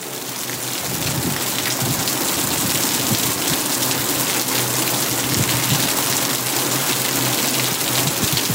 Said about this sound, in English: At 3:30 p.m., the wind brought in the rain.